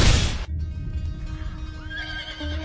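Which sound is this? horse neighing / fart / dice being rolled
horse neighing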